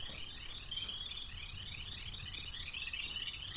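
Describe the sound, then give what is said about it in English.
A dense, steady chorus of cicadas fills a green forested area, the Earth God's forest, with shrill, high-pitched buzzing. Its texture ripples with rapid pulsing sweeps, and there are no voices throughout. “I think this is like an ambience of cicadas chirping.”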